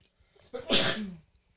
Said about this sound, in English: Sneeze at the same time. That's wild. Bless you. Thank you.